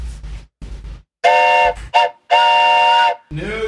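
A train whistle blows outside in several long, loud, steady blasts with short breaks between, its harmonic tone carrying over rumbling background noise.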